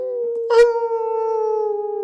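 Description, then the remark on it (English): A person imitates a wolf pack howling: one steady, drawn-out wavering note, held for about two seconds after a brief breathy onset, fairly loud with no other sounds. “And yeah, all the dogs, all her pack is just howling.”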